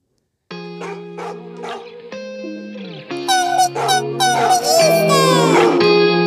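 A hip-hop track plays on its own, opening with sustained synth tones and heavily processed, distorted sounds, then swelling into a denser, louder mix partway through.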